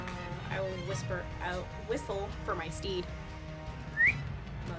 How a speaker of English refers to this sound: I will whistle for my steed.